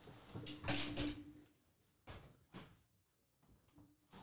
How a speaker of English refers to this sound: Yeah, shut the door. Don't even shut the door. Shut that fucking door. I'm shutting the door.